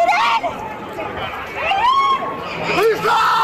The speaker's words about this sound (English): Panic also caught on camera in the aftermath, lawn chairs and possessions left behind, people screaming for their loved ones.